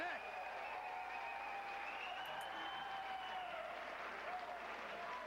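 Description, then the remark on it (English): A large wrestling arena crowd cheers and applauds loudly and continuously after a suplex in the ring, a dense roar of clapping and shouting that holds steady throughout, with some voices rising above the din. “Look at the crowd. Crowd fucking loved it.”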